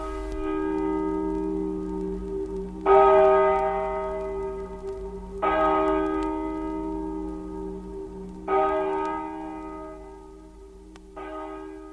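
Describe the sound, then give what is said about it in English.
A church bell tolls slowly and solemnly, about five heavy strikes roughly three seconds apart, each ringing out and fading under a steady low hum, with no voices. “Yet we'll never hear our own funeral bell.”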